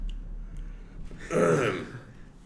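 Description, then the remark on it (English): A single short throat clear, fairly loud, rises midway out of a quiet hum and fades quickly, with no talking around it. “And he coughed. He cleared your throat.”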